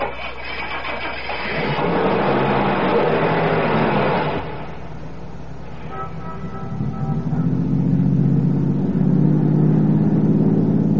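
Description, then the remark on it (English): A car engine turns over after a stretch of steady rumbling noise, then revs up and pulls away with a rising, droning hum that stays loud. No one speaks. “Start your car, head west of the highway, and keep going till I tell you to stop.”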